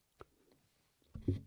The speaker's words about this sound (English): Should I make it a nice loud sip? Sure, why don't we do some ASMR for the people? It's not going to really be ASMR, but okay. Just go for it.